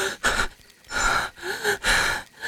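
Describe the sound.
A voice imitates heavy panting, four or five breathy gasps in an uneven rhythm, each a burst of airy noise with brief pauses between, moderately loud.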